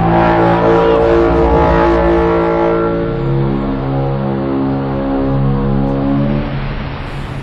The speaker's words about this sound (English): Like when the tripod rises out of the crater in the ground and is just standing over the people. And then it lets out that foghorn blast.